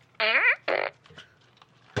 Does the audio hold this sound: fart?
yes